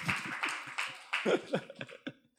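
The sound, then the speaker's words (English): An audience cheers and claps for the speaker's wife, a wash of applause with scattered whoops and shouts rising in several quick swells before tapering off. “Can we cheer for her and her beauty? There we go.”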